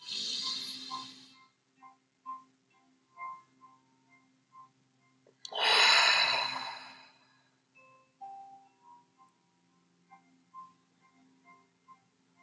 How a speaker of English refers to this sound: Nice full breath in through your nose. Bring that breath right down to your low belly. Holding the breath in your body for just a moment longer than you would, and then letting it go through the mouth.